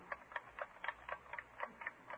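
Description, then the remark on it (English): A wristwatch held up to someone's ear ticks in a brisk, steady rhythm, about four crisp clicks per second, fairly prominent, with no voices or other sounds around it. “You can't tell whether it's the watch ticking or somebody knocking on the door.”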